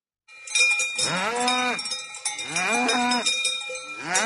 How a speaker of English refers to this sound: Yeah, there's our bovine scatology technology alarm going off.